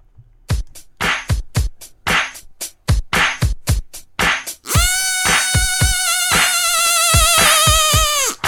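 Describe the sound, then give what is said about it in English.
A short Drizzle News segment theme jingle, also the Drizzle Bees music, that opens with a quick run of sharp, rhythmic clicks and taps, then shifts into a loud, steady buzzing tone, like a swarm of bees, holding to the end. “It's also the Drizzle Bees music.”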